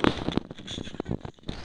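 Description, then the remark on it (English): Ice from a drink being crunched between the teeth, a run of sharp, irregular crackling bites with brittle high-end snaps, fairly loud and alone without any talking. “And the ice, I'm gonna crunch it, hold on.”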